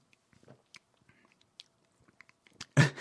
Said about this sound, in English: What was that? You're scared. Whoa. Because it sounds weird when you listen to yourself swallowing. Oh, yeah. Sorry about that. It is kind of a weird sound to hear.